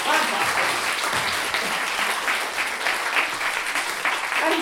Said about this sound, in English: Round of applause, Kelsey, for being a teacher.